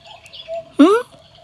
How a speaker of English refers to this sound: I mean, just look at my kid, bruv. He's listening to birds while sleeping.